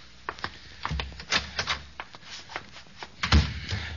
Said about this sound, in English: I know. I'll go in the closet here, and I'll close the door and turn on the light there.